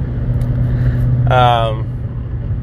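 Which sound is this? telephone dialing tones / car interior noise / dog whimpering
car interior noise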